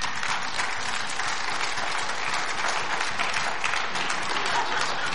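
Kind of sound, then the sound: crowd, clapping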